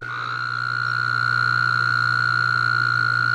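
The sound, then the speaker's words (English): A steady, sustained Wyoming toad mating call trill, recorded at the Mortensen National Wildlife Refuge in Wyoming, holds at an even pitch for the whole stretch, fairly loud and continuous, with no voices and a faint hum of outdoor background beneath it. “It's the mating call of the Wyoming toad, played for others recently residing at the zoo in order to encourage them to, well, hop to it.”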